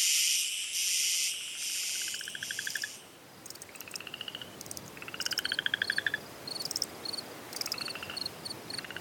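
A dense chorus of frogs calls in rapid, pulsing trills and clicks, layered over a steady high insect buzz, with several callers overlapping and no voices.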